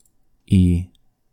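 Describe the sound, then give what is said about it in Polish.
A person gives one short, gruff growl, imitating an angry beast. It's loud, lasts under half a second, and is surrounded by silence. “Wydał taki dźwięk. Niczym zdenerwowana bestia.”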